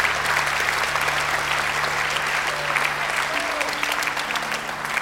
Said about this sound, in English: Let's just give these guys a clap, shall we? It's brilliant. Amazing.